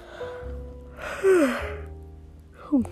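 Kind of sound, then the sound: human body sound, yawning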